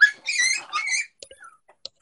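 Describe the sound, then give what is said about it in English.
A small female Yorkie dog that got stuck whines in a few high-pitched, squeaky bursts, fairly loud, followed by faint scattered clicks and shuffling. “What kind of dog is that? That's a Yorkie.”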